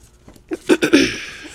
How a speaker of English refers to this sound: Oh my God. Did y'all just hear that? I ripped the dying paper. It's all right.